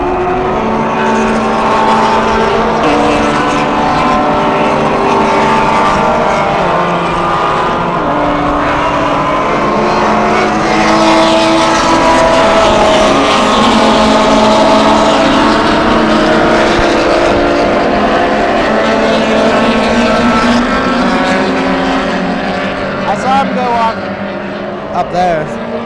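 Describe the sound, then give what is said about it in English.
Loud racing engines roar continuously for the whole stretch, several race cars on a track droning and shifting pitch as they pass by at the end of lap one, with indistinct voices buried underneath. “What did we learn watching the cars go by after lap one? They're very loud whenever they're here, and they're not loud whenever they're over there.”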